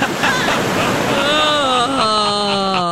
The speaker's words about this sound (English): I found a YouTube video that was just like an endless loop of the ocean.